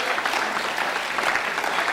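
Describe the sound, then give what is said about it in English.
An audience gives itself a round of applause, a dense, even wash of many hands clapping at once with no pauses and no voices standing out. “Would you give yourselves a round of applause?”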